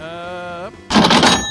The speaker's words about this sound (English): Johnny, give him a cha-ching on that.